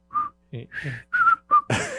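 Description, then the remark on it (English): A person whistles the theme of the Andy Griffith Show, a short, jaunty tune in several quick phrases with brief pauses between them, slightly breathy, before a louder, noisier burst cuts in at the end. “I'm not whistling good, but Don Knotts was so great in that series.”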